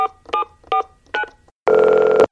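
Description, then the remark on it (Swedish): Four short, evenly spaced telephone keypad tones beep in quick succession as a phone call is dialed, followed by a longer, louder steady ringing tone as the call connects. No voices. “Får jag ringa då?”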